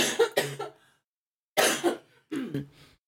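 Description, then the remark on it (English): Several loud coughs in quick bursts from a person with allergies: a pair at the start, then two more after a short pause, with no talking in between. “I have to cough. I am so sorry.”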